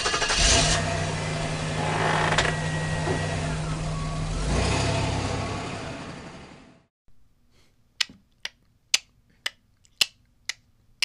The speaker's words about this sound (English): What does that sound like? Turn signal. They used to. I don't know. They have different sounds now, don't they? Yeah. Like some of them you can barely hear and some of them are like really loud.